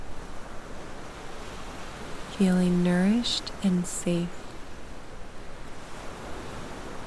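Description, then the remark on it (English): A steady, soft wash of ocean surf breaking on the shore rolls on without pause, a continuous breaking-wave hiss, while a calm voice speaks briefly over it midway through. “Noticing the waves hitting the shore.”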